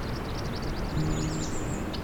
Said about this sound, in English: This is when a location suddenly has an unusually high number of birds, both in sheer numbers and in the diversity of species. This can make for a soundscape that is full of bird songs.